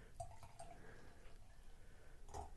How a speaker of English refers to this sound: All right, we're topping off a little bit more. Hopefully with homogenized beer.